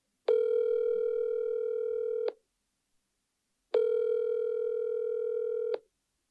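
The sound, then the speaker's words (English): A telephone line tone sounds twice as a person picks up the phone to call a number, each a steady, buzzy two-second hum separated by a pause of silence, clear with no voices. “And then my curiosity got the best of me, and I picked up the phone.”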